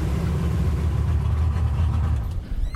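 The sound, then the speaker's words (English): Dan Mundy's motorboat engine idles, tied up right outside the back door of his house: a steady, loud low rumble with a faint throbbing pulse that continues evenly throughout, with no voices. “Dan Mundy ties up his boat right outside the back door of his house.”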